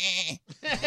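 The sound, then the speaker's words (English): A goat bleats twice in quick succession, loud, with a brief pause between the two wavering, nasal cries and no other sounds around them. “Okay, picture the goat.”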